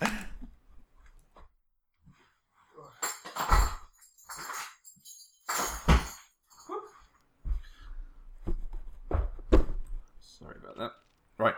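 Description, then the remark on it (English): A door is shut with a few loud, sharp thumps and clatters spread over several seconds, while muffled vocal sounds come and go between the bangs. “Hang on, so do you mind if I stop very briefly just to shut the door, because my baby is now having a absolutely it's like one sec.”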